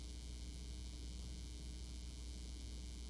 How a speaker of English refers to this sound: We want to correct the sound. Any better? It's the buzz on the line.